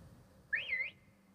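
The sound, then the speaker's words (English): A person whistles inside a large sixth-floor lingerie shop: a single short whistled phrase, clear, rising then dipping and rising again in a smooth glide, lasting under half a second against a quiet low background. “I whistled again.”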